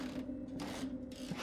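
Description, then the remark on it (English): Wooden stairs leading down under an empty church creak underfoot as someone descends, in a long, groaning strain, with two rougher scraping swells as weight shifts. The sound is steady, with no voices. “The wooden stairs creaked under my feet, and I was worried they may give out from under me.”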